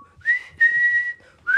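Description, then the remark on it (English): A person whistles the intro melody of a song, a short clear phrase with sustained rising and held notes in three bursts and no talking. “I love the whistle intro that I just did perfectly.”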